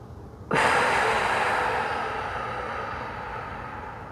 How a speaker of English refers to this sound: Four, seven, eight, breathing. Breathe in for a count of four.